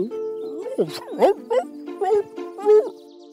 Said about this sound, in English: After a while, he stopped and started barking persistently.